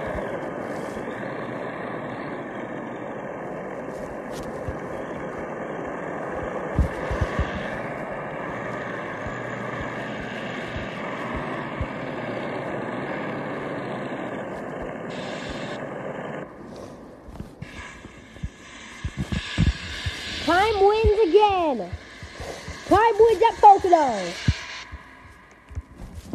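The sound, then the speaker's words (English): A race car engine during a burnout: a steady, droning rumble gives way to two sharp revving bursts, the pitch climbing and falling each time, loud, with harsh hissing noise mixed in; the car is wrecked against the wall during the burnout. “Time destroyed his car with the death wall during his burnout”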